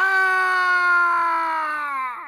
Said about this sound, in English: Remember we were trying to replace the screaming sound effect? Yeah, well, that was one of the most that stood out of that whole CD. One of the most popular, screaming guy. Well, listen to this.